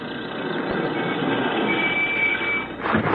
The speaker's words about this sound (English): Hey, that's Stryker now, coming back with a truck to help me haul some of this stuff. Must be a nut to jockey that thing on this kind of road and then do it weekends just to spend a night in town.